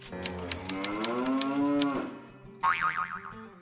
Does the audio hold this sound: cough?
no